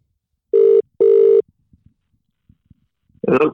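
Two steady ringback tones on the line of an outgoing phone call to a rugby league player, each lasting about a quarter to half a second, followed by a few faint clicks before a voice answers at the end.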